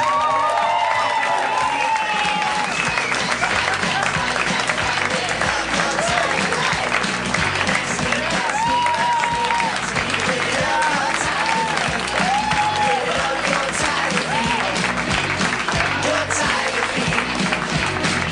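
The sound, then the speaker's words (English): An audience at a live Harmontown show applauds and cheers loudly and steadily for Dan Harmon, with dense clapping and scattered whoops and shouts rising above the roar for the full stretch. “Please keep the emotions high and the hands clapping for the mayor of Harmontown, Mr.”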